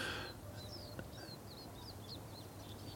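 Birds sing and chirp on a late morning in March, a steady run of short, high twittering calls overlapping across a quiet outdoor background with a faint low rumble.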